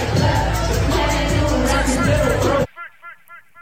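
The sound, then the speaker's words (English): A loud, dense concert crowd roar with mingled voices and cheering holds steady for a couple of seconds, then cuts off abruptly, leaving a few faint, brief voice-like tones. “So it looks like this crowd's a little dead, man.”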